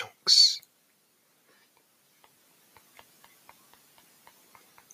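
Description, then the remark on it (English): Someone typing a search for funny short jokes on a phone: a brief breathy hiss, then a quiet pause, then a long run of soft, light taps clicking at a quick, slightly uneven pace. “That's me typing it in on my phone.”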